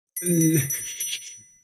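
A bright bell rings once with a sustained high metallic tone that fades over about a second and a half, with a brief lower tone at the start.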